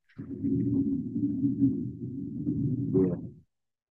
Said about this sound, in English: Trucks just be rolling past. I'm right by the street. I'm, like, right. I live right on the corner.